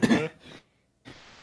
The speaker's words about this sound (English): Sorry, I'm like coughing